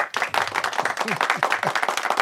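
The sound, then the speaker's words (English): A crowd applauds as a guest is introduced on a show, with dense, steady clapping that holds at a fairly loud level throughout, while a few brief voices or whoops rise through the middle of it. “It's nice to hear applause.”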